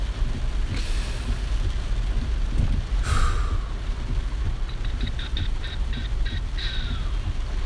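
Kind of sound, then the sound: nature, heavy rain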